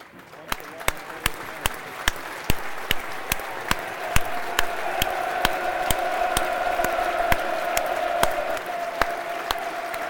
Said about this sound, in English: This is Memorial Day. We're doing a minute's applause here.